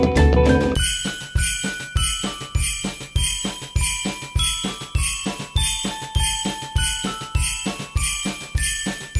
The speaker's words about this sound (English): We will ring those Christmas bells so quietly, quietly. We will hear the dingle, dingle when they jingle, jingle. Yes, we'll ring those Christmas bells so quietly, quietly.